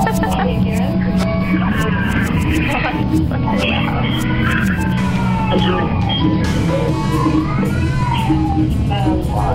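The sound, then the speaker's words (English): A hurt cat cries with repeated drawn-out, wavering meows, loud, over a dense, busy background with what sounds like murmuring voices. “What did the cat fall on? In there. And he's crying.”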